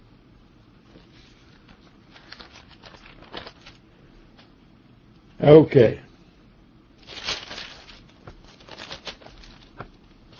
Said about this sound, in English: I'm still turning pages, folks.